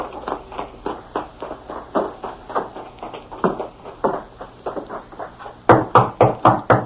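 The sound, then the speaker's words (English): Steady, rhythmic thudding builds for several seconds, then gives way to a burst of five or six loud, sharp, insistent knocks on a door. No voices are heard. “Who's there? Open the door, Lee. I want to talk to you.”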